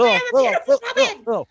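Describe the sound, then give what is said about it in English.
A human voice imitates a crow cawing, giving about five short, harsh, rising-and-falling calls in quick succession, fairly loud. “I'm a crow now.”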